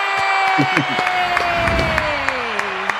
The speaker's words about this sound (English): Welcome. Love the applause. Oh, some things in life are too important to leave to chance. And you just got to make sure you get some claps every day a little bit.